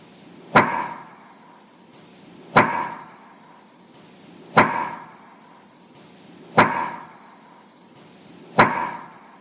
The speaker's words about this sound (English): There's thought put behind it, and it means probably some sort of communication. But having said that, let's play Wood Knock, labeled Wood Knock Best Response, about 10 seconds here, and of course looped.